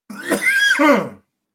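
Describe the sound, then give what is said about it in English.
A single strained, raspy cough, drawn out for about a second with a wheezy, almost whinnying vocal tone, then silence. “That cough is immortal”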